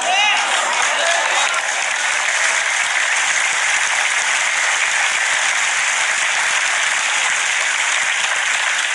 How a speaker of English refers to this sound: Y'all are clapping at me, but I'm saying it to you.